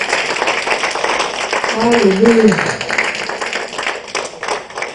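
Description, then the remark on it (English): Steady, dense applause from a crowd clapping for Jesus fills the whole clip, with a voice rising in a sung or shouted exclamation partway through. “Let's clap for Jesus, please.”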